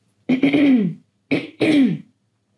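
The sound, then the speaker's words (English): A person clears their throat loudly, first one long rasping clear, then a short pause followed by two quick gruff bursts. No talking. “Also, sorry that I keep clearing my throat.”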